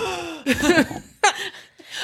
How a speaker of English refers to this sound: So. I just like start gasping. I'm like a dementor.